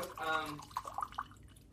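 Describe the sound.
Coke poured into a glass, a short burst of splashing and gurgling trickles, fairly quiet, fading out after a second or so, with a brief voice-like tone at the start.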